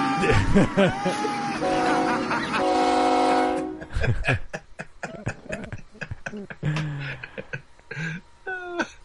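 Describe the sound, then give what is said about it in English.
After a brief burst of voices, a loud, sustained train horn blares for a couple of seconds in a played video clip, then cuts off as people start talking over each other. “I found the guy driving the pain train. I sent you the clip.”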